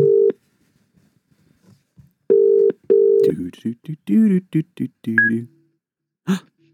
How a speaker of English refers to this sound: So we get our first guest on the phone, Mr. Ollie. Let's see if he answers.